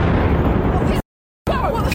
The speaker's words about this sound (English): after a loud boom shook the crossroads of the world. The people is running. Why are the people is running? Was it a bomb? Shots fired? Nobody knew. This tourist was recording on her cell phone when she heard the explosion.